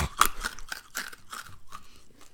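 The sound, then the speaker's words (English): Loud crunching of a musk melon hard candy being bitten and chewed, a series of sharp brittle cracks repeating in an uneven rhythm over a couple of seconds, with no talking. “I'm going to crunch on this hard candy real quick.”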